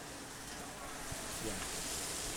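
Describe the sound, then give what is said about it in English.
Duck breast sears to a light golden brown in a hot pan with a steady, dense sizzle, a continuous crackling hiss that holds an even level throughout, with a faint murmur of voice briefly underneath. “It looks like it's just seared in a light golden brown. It's making a lovely sizzle.”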